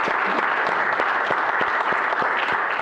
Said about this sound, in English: So how about a round of applause for those two for their 25 years of service?